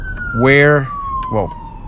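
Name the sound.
ambulance siren passing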